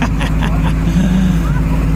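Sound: truck driving off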